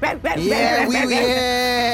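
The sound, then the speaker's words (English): A person imitates a dog, fairly loud, giving a few quick yipping barks that slide into a drawn-out whining howl lasting about a second. “bark at him.”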